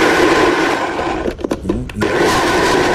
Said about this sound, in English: You could never use that blender for anything else after you blend up shit, right? I wouldn't feel comfortable. You gotta have a special... Oh, it's a Nutribullet, by the way, if you're wondering. The shit is blended up, but it looks like it's too...